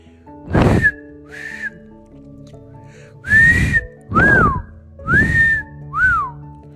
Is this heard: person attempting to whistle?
yes